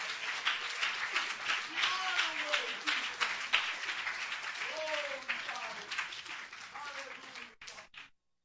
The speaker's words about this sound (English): Come on, will you clap your hands and praise the Lord with me right now?